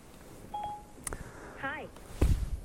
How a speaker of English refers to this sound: Sorry. My phone's talking to me.